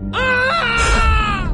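A man lets out a loud, sustained scream, strained and harmonic, that wavers and rises in pitch before breaking into a rougher cry, lasting about a second and a half.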